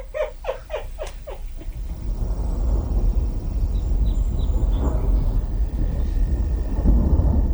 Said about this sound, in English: Far off to the west, a storm is approaching.